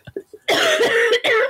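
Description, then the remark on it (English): A loud coughing fit from a person coming out of a cold: a few small throaty hacks, then harsh, raspy coughs in two sustained bursts with a brief catch of breath between them. “sorry, I have a coughing fit.”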